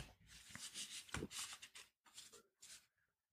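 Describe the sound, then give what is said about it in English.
Quiet riffling of a deck of cards being shuffled, a series of crisp papery bursts in uneven rhythm with brief pauses between them, no voices. “So I'm still shuffling.”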